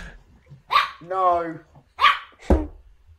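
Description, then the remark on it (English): A dog barks a few times: short sharp barks with a longer, drawn-out yowl between them, loud against a quiet background. “Oh, it's dog. Matt's can't control this dog”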